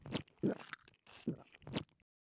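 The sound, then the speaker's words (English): Someone eats a bowl of porridge in a few short, crunchy bites and chews, about four quick bursts of mouth and spoon noise with brief pauses between, and no talking. “And she ate the entire bowl.”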